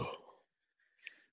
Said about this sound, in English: I'm yawning again.